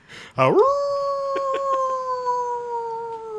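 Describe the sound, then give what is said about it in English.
A single long wolf-like howl, likely a person imitating one: it swoops sharply upward, then holds a steady, loud, slowly falling wail for about three seconds without any talking. “I'm a wolf boy.”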